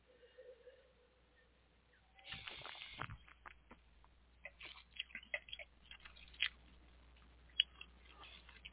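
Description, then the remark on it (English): An airy second sip of a 13.8% alcohol wine is slurped, followed by soft wet mouth clicks and smacking as the sip is swirled and tasted. Quiet, intimate, with no talking. “Okay, second sip.”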